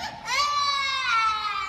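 Nico, a pet bird, throws a crying tantrum while getting ready for a show, letting out one loud, sustained, high-pitched wail that closely mimics a child's sobbing, with no talking over it.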